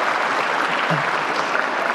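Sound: church audience applauding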